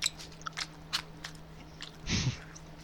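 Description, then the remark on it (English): Crunchy chewing of food with the skin on, with sharp little bites and crackles spread across a few seconds, then a louder, fuller crunch near the end; nobody speaks. “And you could chew on it longer, and it's healthier, isn't it? You keep the skin on.”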